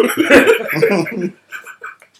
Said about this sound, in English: Coughing. He's coughing.